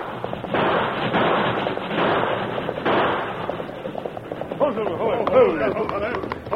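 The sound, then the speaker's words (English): Several sharp gunshot cracks ring out at irregular moments, warning shots fired by the Lone Ranger as he races toward an approaching train, mixed with loud, urgent shouting and a dense, noisy background, with a man's voice calling out toward the end. “As he neared the careening engine, the Lone Ranger began to shout and fire warning shots,”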